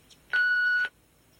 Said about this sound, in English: I'm in right now, so you can talk to me personally. Please start talking at the sound of the beep.